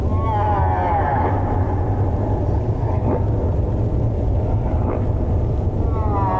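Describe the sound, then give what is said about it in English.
Underwater song of a male humpback whale in the open ocean: long, wavering tonal moans and rising sweeps layered over a constant low rumble, with faint upsweeping calls recurring every couple of seconds, sounding echoey. “Male humpback whales repeat each other's songs and add to them so they become ever more complex and beautiful, showing off their memory as well as sheer volume.”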